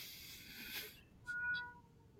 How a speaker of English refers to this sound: There's the kitty. There is the kitty, yes.